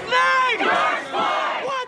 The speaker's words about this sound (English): I grabbed my recorder, put my press pass around my neck, and drove over to 3rd and Pine in Long Beach. I followed protesters, their chants, their anger, into the thick of the crowd.